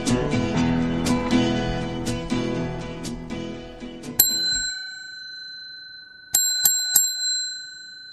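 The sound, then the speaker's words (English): A Toyota bell rings out clearly, first a single bright ding that hangs and fades, then three quick rings close together, heard while parked outside the B&A Bakery, 1820 Ellesmere, just west of Bellamy Road North. Before it comes a few seconds of rustling, clattery noise. No voices. “That's the Toyota bell.”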